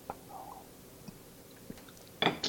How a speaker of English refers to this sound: Take a sip. Okay.